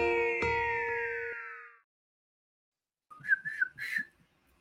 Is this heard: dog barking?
no